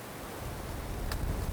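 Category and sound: nature, hail falling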